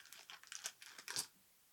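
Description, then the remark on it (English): Quick, irregular clicks and rattles as dice are taken out and rummaged, ending in a brighter clattering burst as they are rolled for a charisma check, then going quiet. Fairly soft, no voices. “Got to get out my dice.”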